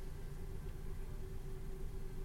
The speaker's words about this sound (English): Yeah, there's cars everywhere, so.